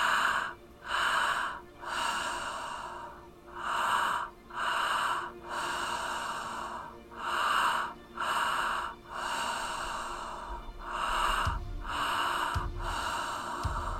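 Loud breathing repeats steadily in a breathwork exercise: deep inhales drawn in two quick stages, into the belly then the heart, each followed by a long, airy exhale, with brief pauses between cycles and no talking.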